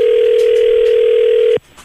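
A loud, steady telephone ringback tone hums for about a second and a half on an outgoing call placed to a random person by the Roz and Mocha Show on Star Wars Day, then cuts off abruptly, leaving only faint background noise.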